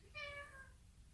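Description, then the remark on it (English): A single short cat meow, clear, with a bright harmonic tone that rises and fades quickly over a faint low background rumble. “Hello, cat.”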